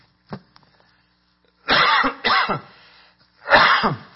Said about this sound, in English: Excuse me here, I'm going to need to cough.